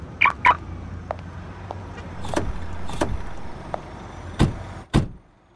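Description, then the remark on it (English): A couple of short chirps, then car doors thud shut several times over a low engine rumble as the car starts up and idles, with no talking. “Wow, what a nice car.”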